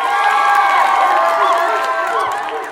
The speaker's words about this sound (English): Or sometimes we might joke and like there's a sudden moment where we want to change subjects or just have a funny thing and it's, or we get some clapping and cheers.